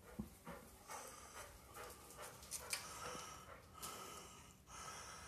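A dog pants steadily in quick, rhythmic breaths, with an occasional snort, fairly quiet. No voices are heard.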